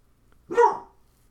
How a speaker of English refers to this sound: My fucking dog is being a bitch and barking.